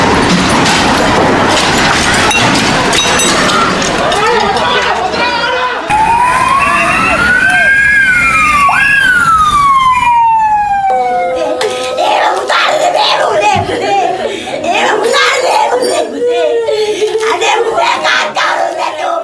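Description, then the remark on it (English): Emergency vehicle sirens wail with rising and falling sweeps amid loud, chaotic street noise and shouting after the Easter Sunday suicide attacks of April 21, 2019, in Sri Lanka, the sirens cutting clearly through the middle of the commotion. “These are the sounds of terror. Explosions, sirens, wailing, and then deafening silence.”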